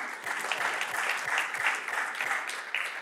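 A church audience claps steadily for about three seconds, a dense, even patter of many hands at a moderate level with no voices over it.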